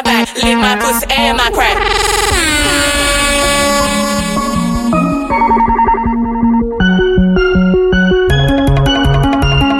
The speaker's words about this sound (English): Air horn roll is genius. So clean.